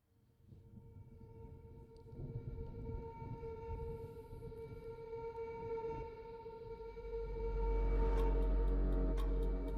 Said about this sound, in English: Was it the ticking clock? Yeah. Yeah, I thought you'd get it from that.